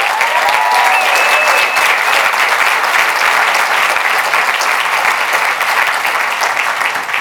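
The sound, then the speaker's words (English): Sustained applause from a large audience at a Vayner event, clapping for the Vayner Experience team, a dense steady wash of clapping at constant loudness, with a couple of brief whistles near the start. “I'd love for you to clap it up for them.”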